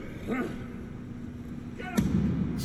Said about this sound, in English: I was going to say, dude, he's slamming the fuck out of this door.